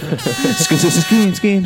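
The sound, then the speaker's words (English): A string of loud, blaring Jamaican air horn blasts in quick succession, the pitch sliding up and down between bursts, with a voice briefly audible underneath. “I'm going to have the air horns, Jamaican air horns in the background.”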